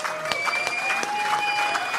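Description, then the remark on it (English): A live audience applauds Jack Freestone steadily, a dense, continuous patter of many hands with a few sharper claps standing out, fairly loud and sustained throughout. “A round of applause for Jack Freestone.”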